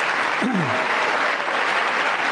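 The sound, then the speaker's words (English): A crowd applauds steadily, dense clapping filling the whole stretch at an even loudness, with a brief falling cheer rising out of it near the start. “Why are they cheering the brain dead kid comment?”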